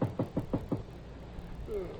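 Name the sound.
knocking on a door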